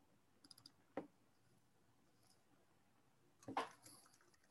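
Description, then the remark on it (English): A few scattered keystrokes on a computer keyboard: a quick light cluster of taps, one sharper click, then a short louder burst of typing after a pause, with no voices. “Excuse the typing.”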